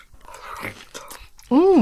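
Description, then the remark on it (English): Crisp, crunchy bites and chewing on a juicy apple fallen from a tree, a few rough bursts, followed by a short, loud, pleased humming voice at the end. “Crunchy and sweet. Delicious.”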